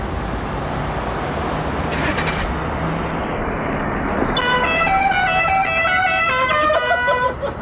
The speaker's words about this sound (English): I did want to bring up the fact that this was the first appearance of Polly's car horn.